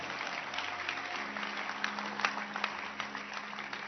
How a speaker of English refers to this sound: Can you clap your hands for yourself?